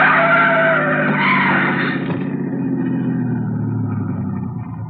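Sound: car tires skidding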